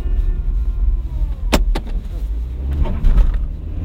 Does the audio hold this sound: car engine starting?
yes